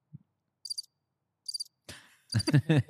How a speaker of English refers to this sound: Here's the thing about crickets. You think that that means boring, but if I was doing a show for all crickets, that means I'm crushing.